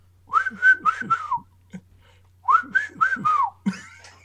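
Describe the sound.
Someone whistles a short tune, two bursts of bright, wavering notes separated by a brief pause, with no talking over it.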